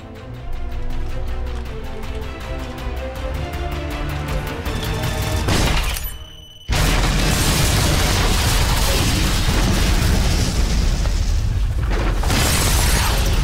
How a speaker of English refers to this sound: After the hotel room gets blown up and he fights his way out, killing the entire Moscow police force.